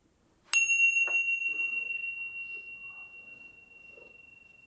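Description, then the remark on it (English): A single meditation bell, the third bell near the end of a meditation practice, is struck once and rings out with a clear, bright tone that lingers and slowly fades over several seconds. “Fluttering the eyes open and closed with the third bell.”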